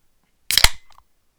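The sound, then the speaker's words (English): A can of dark, heavy beer is cracked open: a sharp metallic snap with a quick burst of hiss, followed by a few faint fizzy crackles before silence. No one speaks. “Yeah, let's crack this thing open and give it a taste, shall we?”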